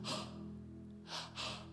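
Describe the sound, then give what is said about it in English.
A person imitates a deer panting with three sharp, breathy exhalations, one at the start and two close together near the end, over a soft sustained musical drone. “It's like the deer panting.”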